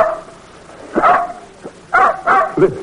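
Blackie, a little mutt, gives a few short, yipping barks, spaced irregularly: one near the start, then two quick ones followed by a higher whimpering yelp. There is no talking.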